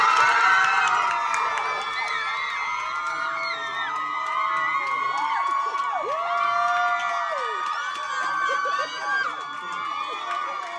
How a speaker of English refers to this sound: I mean, like, can you imagine throwing your fists up and being this kind of cheering over something that has nothing to do with anything